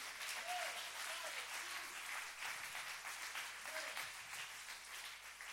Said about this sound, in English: Clap your hands and give them praise.